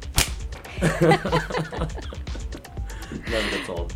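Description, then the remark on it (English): A single sharp whip crack snaps loudly right at the start, followed by people chuckling and laughing for the next few seconds. “Just the whip.”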